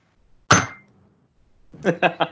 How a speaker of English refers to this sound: That hurt me knuckles a little bit, but it had a nice ring to it. It still sounds like a glass with a spoon in it to me. It's a glass on a marble coaster.